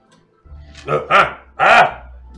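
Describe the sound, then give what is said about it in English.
A voice imitates gorillas growling, three rough, throaty grunts in quick succession, fairly loud over a low steady hum. “They're basically saying nothing. They're just pointing and growling.”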